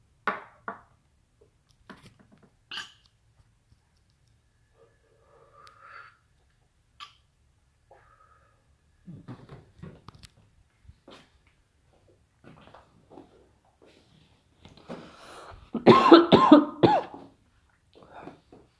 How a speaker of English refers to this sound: I'm gonna smoke some weed right now. I'm gonna smoke some weed and record it. So, hold on. I'm not sure if you could hear this, but I'm gonna smoke some weed.